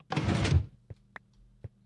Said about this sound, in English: Are you playing with the useless machine? Yes. Sorry. It is quite useless.